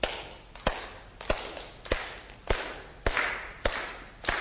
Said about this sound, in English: So you ready? You ready to clap along with me?